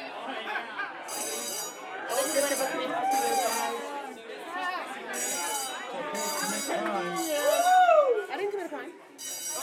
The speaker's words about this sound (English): Now this big blaring alarm was just sounding off, and I got freaked out because I was thinking, if this is an actual fire, this is not how I'm going to die.